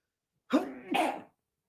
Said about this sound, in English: I sneezed. It happened.